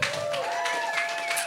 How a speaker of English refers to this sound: Is he the most handsome member of …? By a round of applause. Ladies, men, what do you think?